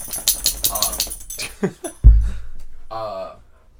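A dog whimpers in a few short, high, sliding whines, broken by a dull thump midway, then one more thin, wavering whine near the end.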